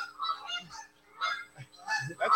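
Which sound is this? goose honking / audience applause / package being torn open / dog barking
goose honking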